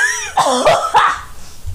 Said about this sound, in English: Oh, my God. Stop coughing. Oh, my God. I'm having, like, an asthma thing. You're making me cough.